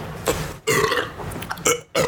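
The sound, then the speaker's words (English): A loud, drawn-out burp right up close to the microphone, rumbling in a few uneven surges over about two seconds, with no talking. “Let me just burp directly into the microphone.”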